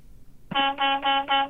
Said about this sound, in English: That's aggressive Paul, horn honk there. Yeah, he's definitely cleared out I-95 right there.